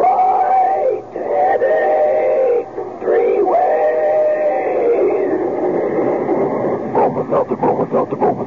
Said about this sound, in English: Meanwhile, here's a friendly tip from an old pal, our famous talking Bromo Seltzer train.